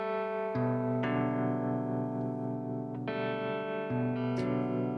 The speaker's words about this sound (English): So much awesome reverb and tone on this record.